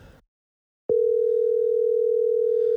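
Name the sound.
phone call ringing tone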